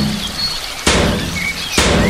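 Two loud, heavy thuds about a second apart as a Cat Coolers cooler is rammed like a battering ram into a steel-reinforced door, each with a brief rattling decay, while faint birds chirp in the background.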